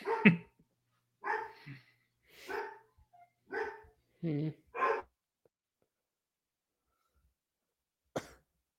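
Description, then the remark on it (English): A dog barks in a quick, uneven burst of about six or seven sharp barks, then goes quiet before one last short bark. The barking is fairly loud, with no one talking. “At least the dog's still alive.”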